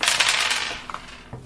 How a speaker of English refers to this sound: Fine, just throwing with all the other dice.